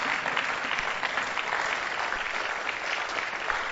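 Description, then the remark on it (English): An audience at a church service at the Riverside claps steadily, a dense, continuous wash of many hands with no pauses, holding at an even, fairly loud level throughout. “Oh, please keep clapping if you have found a new life.”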